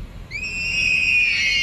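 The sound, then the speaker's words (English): A shrill, steady squeal from a vehicle's driver window rolling down, rising slightly in pitch and holding for over a second, loud with no talking. “Customer states, whenever I roll the driver window down, it sounds like somebody's screaming.”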